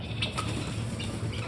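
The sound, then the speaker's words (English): A red-headed bird with a broken wing flutters its wings on the ground in heather in a few quick, irregular bursts of rustling flaps, fairly soft, over a steady low hum with no voices. “Fluttering on the ground in front of him was a bird, red-headed and angry, dragging a broken wing through the heather.”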